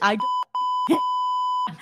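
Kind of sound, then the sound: sound effect, censor beep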